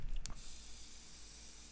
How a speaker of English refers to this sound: And this feels like a perfect break for me to take a swig of my beverage and a hit of my pen. Glug, glug, glug.